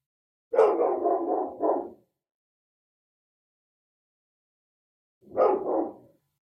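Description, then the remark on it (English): A dog right outside barks occasionally, in two separate bursts: a longer run of rapid barks followed after a few seconds of silence by a shorter one, with no voices present. “For example, for myself, I'm here doing a meditation and there's a dog right outside barking occasionally.”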